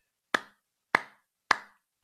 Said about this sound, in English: What's this? That's a round of applause for the Home Course series.